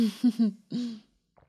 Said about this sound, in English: Sorry, me coughing so much, guys. Sorry. I don't know why I'm coughing.